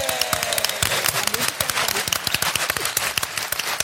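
A crowd at a live show gives another round of applause for a guest, dense overlapping claps forming a steady, loud wash of sharp slaps that continues throughout with no pause.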